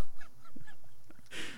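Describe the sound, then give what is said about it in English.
Birds call outdoors in a quick series of honking, goose-like cries, ending with a short burst of rushing, hissy noise. “I want to thank the birds for joining us as well.”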